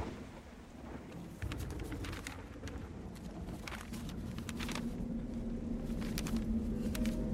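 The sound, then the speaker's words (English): Heavy rain pours down outside in a dense, steady roar with a low rumble underneath and scattered sharp spatters, swelling louder after the first second and continuing without a break. “Whoa, it's really coming down out there.”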